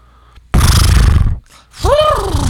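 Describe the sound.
A person loudly imitates a horse: a harsh, breathy blast followed by a short pause and a wavering, quavering whinny that dips in pitch.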